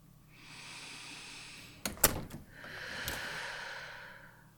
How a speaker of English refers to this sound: You close the door behind you and breathe.